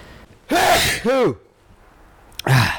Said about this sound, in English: Yes, and I might be sneezing through the episode because I purposefully incited some allergies by breathing in black pepper, which I do not recommend for anyone out there.